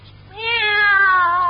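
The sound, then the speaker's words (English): A single long, drawn-out, fairly loud meow from Minerva, a pet cat, its pitch sliding gently downward before it trails off, with no talking around it. “Take our cat Minerva.”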